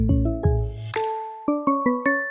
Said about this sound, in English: But you hear that chime, you know what it's time for.